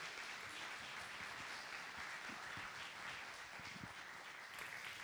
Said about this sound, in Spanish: Recibámoslo con un aplauso.